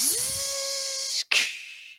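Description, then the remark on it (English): A voice imitates hissing steam in two breathy bursts, a long airy hiss with a faint rising hum at the start, then a brief break and a second, shorter hiss that fades out. “You hear the steam just like...”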